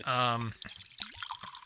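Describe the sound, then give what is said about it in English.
Liquid pours briefly and steadily into a glass, its tone rising as it fills, then stops. Soft voices murmur right afterward. “So we're just gonna pour this out while we chat.”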